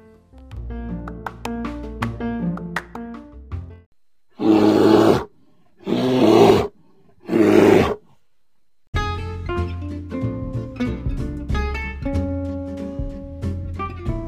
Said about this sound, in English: That was an interview with a real grizzly bear.